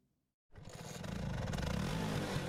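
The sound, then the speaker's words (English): After a brief silence, a Vespa motor scooter engine kicks in and runs loud in Rome, Italy, its buzzing drone climbing slightly in pitch as it revs steadily. “For many, a Vespa is not just a way to get around town. The stylish scooters have become an ambassador of Italian style, a symbol of Rome.”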